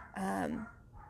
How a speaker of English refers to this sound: I can hear my dogs barking inside and my kids are napping. So I hope they don't wake my little children up.